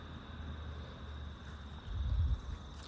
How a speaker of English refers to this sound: I am hearing a high-flying jet, but again, you know, the only way to get those jets on the file is, and some of them you can get because they're louder and they're lower down.